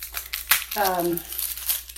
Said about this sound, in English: And I should be doing something while I'm talking, right? I should. We'll need a little garlic, so I'll start crunching up the garlic while I talk.